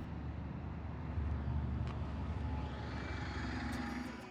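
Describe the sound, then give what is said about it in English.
A steady, low engine rumble of a bus drones continuously, fairly loud, with faint rattles and road noise layered over the deep hum, as a passenger boards the bus. “Our traveller climbs aboard the second bus.”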